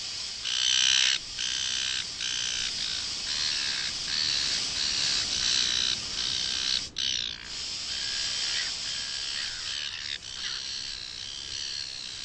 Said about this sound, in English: Because she goes into the tent, she pulls out the bug spray and she sprays the ants, and instantly they cut in audio of seagulls fighting, probably over a chip or something.